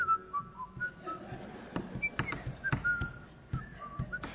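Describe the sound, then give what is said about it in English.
A person whistles idly, a wandering tune of short, breathy notes, moderately quiet, with a few sharp clicks and knocks scattered through the background. “That's not with the whistling.”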